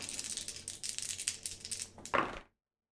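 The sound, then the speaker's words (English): Dice for a game move, one action die and two challenge dice, rattle and tumble in a steady clatter of small clicks for about two seconds, ending in a sharper, louder clack as they land and settle. No voices. “So we've got a 3 on the action die and 2 twos on the challenge dice for a strong hit with a match.”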